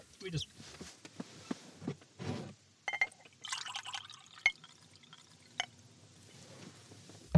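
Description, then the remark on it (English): Water is poured into a glass, a burbling, splashing fill with a few drips and light clinks, while muffled voices murmur faintly. “Here's a glass of water there, if you like.”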